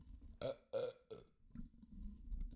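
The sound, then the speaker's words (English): A loud burp breaks into three quick guttural pulses, followed by a softer rumbling tail, with no talking during it. “I could feel it. I was like, oh God, I gotta burp.”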